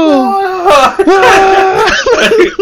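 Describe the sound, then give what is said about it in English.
A man lets out a loud, strained, wavering scream, an exaggerated imitation of Goku's anime power-up yell before blowing up, that rises and breaks for a few seconds. “You scream like Goku was playing there, about to blow up.”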